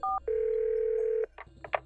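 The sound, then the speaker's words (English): A telephone mounted in a kitchen area is picked up and 911 is dialed: a short two-pitch keypad beep, then a long steady electronic phone tone lasting about a second, followed by a few quick, softer handset clicks and blips, fairly loud, with no voices. “She tiptoes over to the phone, picks it up, and dials 911.”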